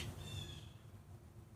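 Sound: bird calling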